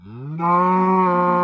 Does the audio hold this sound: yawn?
no